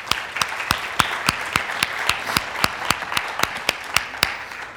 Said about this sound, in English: We had 7 people get baptized last week. Y'all give them a round of applause again.